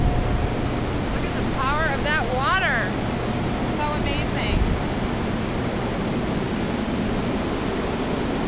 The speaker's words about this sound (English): And this is the sound of the Connecticut River, the water falling through the dam, and at the same time generating all the power for the city of Holyoke.